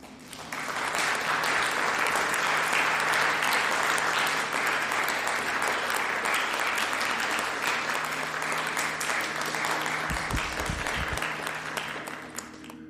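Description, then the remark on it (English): A theatre audience applauds as the stage lights come up, a dense wash of many hands clapping that swells in within the first second and holds at a strong, even level before easing slightly at the end. “The audience applauds as light illuminates the stage.”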